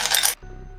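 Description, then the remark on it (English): A brief burst of three small dice clattering and clinking together as they're scooped from a bowl to be re-rolled in a tabletop game, lasting about a third of a second before dropping to a quiet background hum. “Just going to grab them out of my bowl here.”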